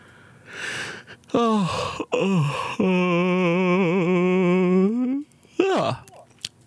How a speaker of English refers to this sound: Big yawn.